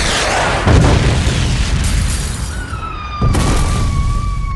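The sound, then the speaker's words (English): A powerful explosion at an orphanage booms out with a deep rumbling blast, followed moments later by a second heavy burst, with a high ringing tone lingering over the noisy aftermath. “A powerful explosion rocked the orphanage to its core, taking all by surprise.”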